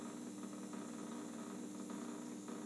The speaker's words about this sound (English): We're going to go for 20 minutes here. 20 minutes of the ozonator. I'm going to hold you close to the water. I'm not going to do it. I'm not going to risk it. We've got the ozonator going on in here.